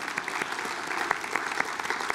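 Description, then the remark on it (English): An audience claps together in praise of the Lord, a dense, steady patter of many hands with sharper individual claps popping out above the wash, holding at a fairly even level throughout. “Let's give the Lord a shout of praise, a clap of praise.”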